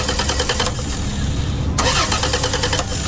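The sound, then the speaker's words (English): A car engine cranks repeatedly with a rapid, rhythmic churning, pauses briefly, then grinds on again without catching as the car fails to start, loud throughout. “Looks like he might have to forfeit the game, son. Car problems keeping you in last place?”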